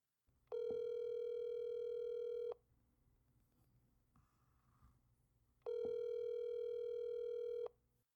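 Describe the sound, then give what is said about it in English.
A telephone line tone sounds twice, each a steady electronic hum lasting about two seconds with a pause between, heard alone with faint background noise and no talking. “Let me try this number.”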